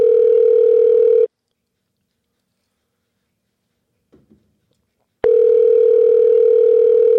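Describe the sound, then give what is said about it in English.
Telephone ringback tone of an outgoing call: a loud, steady electronic buzz that stops, leaves about four seconds of near silence with a faint soft noise, then sounds again. “Is this our first time calling someone?”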